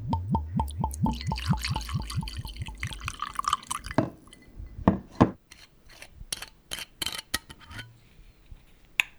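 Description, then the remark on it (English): A steady gurgling run of liquid pulses, then ice cubes clinking in a glass of Bell scotch and a can of gin and tonic snapping open, with a few sharp, bright clinks, during an evening drink at home. No one speaks. “A sound that is quintessentially my nanny is the clinking of her Daily Bell scotch and ice cubes.”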